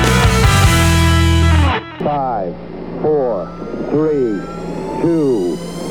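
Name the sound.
rocket launch engine roar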